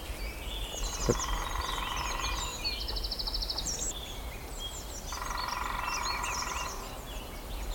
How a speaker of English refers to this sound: I think that's a lesser spotted woodpecker. Just got a feeling. High pitched, rapid.